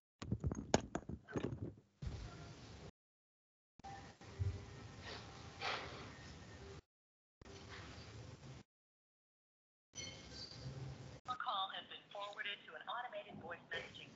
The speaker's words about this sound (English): I'm calling. It's ringing. That's a great ringtone.